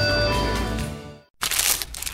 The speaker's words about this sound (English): For all you foodies out there, I'm unwrapping a McDonald's steak, egg, and cheese bagel.